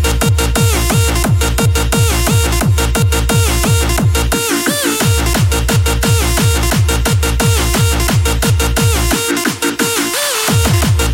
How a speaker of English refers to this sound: But moving on now, we're going into sounds of some power stomp.